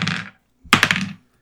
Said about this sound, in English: So I want to grab our dice and I want to roll.